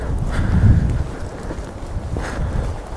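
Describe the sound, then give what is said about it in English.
Strong wind buffets the microphone in a continuous low rumble, surging in gusts and roaring loud throughout, with no other clear sounds. “Right, it's going to be very windy up here, so I do apologise.”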